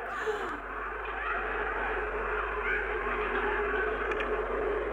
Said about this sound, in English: But the sandstorm was really good effect. It was all that sound of like shouting and screaming, and it sounded like people, and it almost didn't. I loved all that.